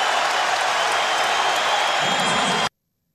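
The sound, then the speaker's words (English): A large arena crowd at a basketball game against the Bucks applauds and cheers after Giannis blocks his former teammate Thon Maker in the fourth quarter, a loud, steady wash of clapping that stays even for a few seconds, then cuts off abruptly into silence. “Thon Maker applaud Giannis.”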